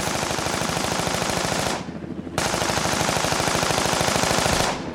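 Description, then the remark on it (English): Loud bursts of rapid machine gun fire from a helicopter, two long sustained volleys separated by a brief pause, with a dense metallic clatter of rounds striking the front of a car and pocking its hood, and no voices. “The helicopter made another pass, this time hitting the front of the car.”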